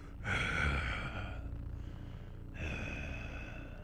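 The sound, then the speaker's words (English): Rough, rumbly throat breathing from a vocalist: two long, raspy breaths, loud, over a low droning rumble with a short pause between them. “Things are off into a rumbly start. And plenty of throat breathing there.”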